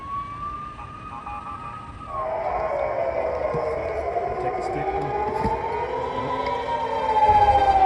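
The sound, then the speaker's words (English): Air-raid sirens wail with long, sliding tones rising and falling, overlapping one another against a low rumbling background, growing somewhat louder toward the end, while an explosion is heard as people are sent into bomb shelters. “It's quiet in here except for the sound of that explosion that you hear and the sound of other sirens.”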